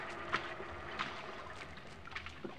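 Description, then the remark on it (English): An inflated rubber boat moves through salt water, taking a person to shore, with a steady wash of sloshing and soft splashes recurring every half second or so, with no voices. “We climbed the ladder through the hatch where an inflated rubber boat was waiting to take me to shore.”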